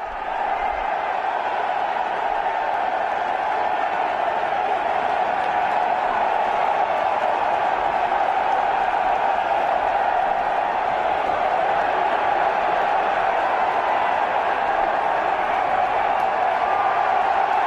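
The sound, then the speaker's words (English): A huge stadium crowd at the Army-Navy game roars and cheers as Donald Trump walks onto the field, a dense, unbroken wash of noise that holds steady and loud for the whole stretch, with no single voice standing out. “Listen to that crowd.”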